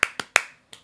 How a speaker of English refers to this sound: We were making a joke about this being the Friends couch literally moments before we went live, and we did like the clap, and I just realized it is 1, 2, 3, 4. It's four claps. Dang, and we do four claps to start the recording.